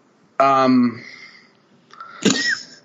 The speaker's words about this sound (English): You just said, you grunted in approval or disapproval. That was a burp, my guy.